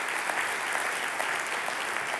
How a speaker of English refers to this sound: Whatever challenge you are facing, God's answer is his people. And he has surrounded us with his people. Yeah, you can cheer for that. Come on, come on, come on.